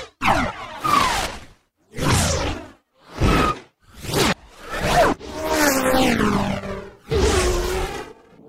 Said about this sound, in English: If any of you follow Jed Sound on Twitter, he made a Kima patch to make whooshes, and it's incredibly complex.